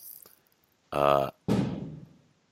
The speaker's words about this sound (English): Yeah, I hope those are just firecrackers. I'm absolutely sure, inshallah, that they are. You see how easy it is to distract me? Yeah, actually, even I'm hearing the sounds here